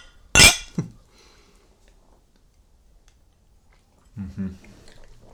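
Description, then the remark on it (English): Glasses clink together once in a toast over a newly opened bottle of Baker's 7-year, a bright, ringing chime with a softer knock just after, then a quiet pause before someone briefly speaks. “Raise them up, boys. Cheers, gentlemen.”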